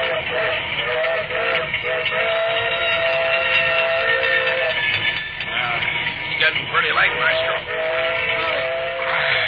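A moving steam circus train blows a long, loud whistle, its steady harmonic tones sounding almost continuously over a dense rumble and clatter of wheels and steam.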